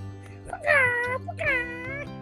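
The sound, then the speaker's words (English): A cat meows twice in close succession, each call a drawn-out, wavering cry that slides downward, heard clearly over a low steady hum. “Woof, woof, woof. Meow.”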